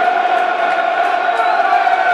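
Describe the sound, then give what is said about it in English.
A big football stadium crowd roars in sustained approval as the Lions press Leeds back during a match, a dense, loud wall of cheering voices that holds steady throughout with no gaps. “Lions pressing them all the way back. To the agreement of the crowd.”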